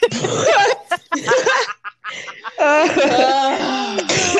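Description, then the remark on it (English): Loud bursts of laughter from a couple of people break into rough, breathy coughing, with short gaps between the outbursts. “I can't laugh too much because then I'm going to start coughing.”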